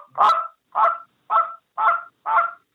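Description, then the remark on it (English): Five loud honks blown on a goose call in a steady, evenly spaced series, each a short nasal blast with clean silence between, clear with no talking. “So then the other part of that, so that's a honk, or, you know, the honk, you know, a cluck is just a little bit sharper.”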